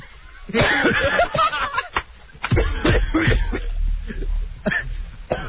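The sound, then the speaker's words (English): A man gags and retches after sniffing something foul, a series of harsh, choking throat heaves and coughs in uneven bursts with brief gasps between them. “He's gagging. And this is no joke. You really look like you're going to get sick.”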